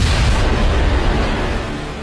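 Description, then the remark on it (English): A loud, sustained rumbling boom fills the whole clip, a deep roaring explosion effect representing the Big Bang that stays heavy and steady for a couple of seconds with no voices over it. “The Big Bang, the birth of time itself.”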